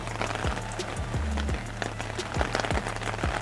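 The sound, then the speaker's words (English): Steady rain patters on an umbrella overhead, a dense, continuous hiss of drops with occasional heavier taps, fairly loud, with no one speaking. “And hopefully the sound of rain on the umbrella is not too loud.”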